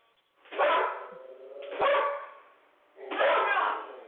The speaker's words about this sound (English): Something got those dogs agitated, but...